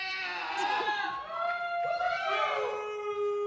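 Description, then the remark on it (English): An audience cheers loudly, voting by applause on a name for a bear skin, with many voices whooping and yelling together in a sustained, energetic burst that holds steady for several seconds. “Give it a round of applause if you want this bear skin to be named Jell-O Bear Afro.”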